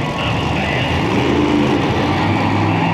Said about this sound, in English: Okay, I know what you're thinking. The guy from the TV show is going really slow in that monster truck. And okay, I kind of was. But they are very hard to drive.